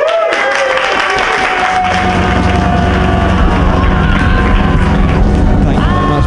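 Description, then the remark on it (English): A crowd applauds loudly and steadily for about six seconds to welcome a comedian on for a special stand-up set, a dense wash of clapping that never lets up, with some sustained tonal sounds mixed in underneath. “So you guys have to be really special right now and clap even bigger than you've clapped before”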